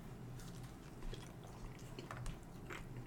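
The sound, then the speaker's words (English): Biting and chewing of cheesy bread: soft, moist mouth sounds with a few crisper crunches, steady and continuous over a few seconds, fairly quiet with no talking. “I'll eat it.”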